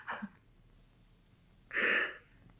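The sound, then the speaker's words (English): A young woman crying quietly before the Pope: a brief, soft sniffle, a pause, then a louder wet, breathy sob-like sniff. No one speaks. “You cry? You shed tears for the Pope?”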